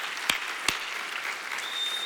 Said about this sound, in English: In the mighty name of Jesus, and all God's people said, come on, let's clap to Jesus for his goodness to us. Hallelujah.